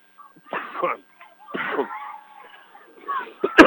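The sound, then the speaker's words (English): A harsh coughing spell from a person who has had a cold all week: several throaty bursts separated by short pauses, ending in a sharper, louder cough. “And during that little coughing spell,”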